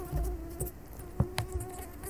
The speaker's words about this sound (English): it's a mosquito that got into your room, and you're like, ah, kill, kill, kill! But you missed it, and now it's somewhere in your room, but you can't see it